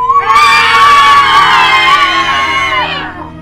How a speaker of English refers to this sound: You remind yourself, the monster isn't real. Or is it? You start to wonder as you hear more screams.